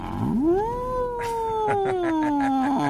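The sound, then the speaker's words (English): A voice imitates a menacing cat yowl: one long, drawn-out moaning wail that rises quickly, holds steady, then slowly sinks, fairly loud, with a few faint clicks behind it. “Yeah, you know, it's got that psychotic cat hum.”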